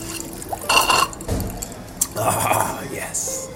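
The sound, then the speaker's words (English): Gurgling of air blown through a straw into coffee, coming in a few uneven bubbly bursts with brief pauses between them. “Maybe blow some more bubbles in our coffee.”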